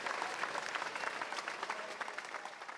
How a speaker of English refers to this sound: Round of applause right there. That was beautiful.